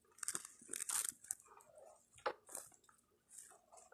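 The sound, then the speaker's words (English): Loud crunching as someone chews crunchy fried noodles sprinkled on top, with a run of irregular, brittle crunches and softer chewing in between. No one speaks. “Sprinkle it over the top. And give it some crunch.”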